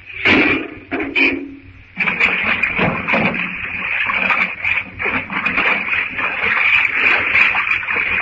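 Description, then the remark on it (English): Water rushes and splashes in a loud, continuous surge after a couple of brief knocks at the start, churning steadily for several seconds as it rushes out through an opened door, with no talking. “If he opens the door, the water will rush out.”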